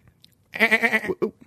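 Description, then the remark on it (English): A single goat lets out a loud, wavering bleat lasting about half a second, with a short, sharp follow-up cry right after, otherwise quiet. “The goat has spoken.”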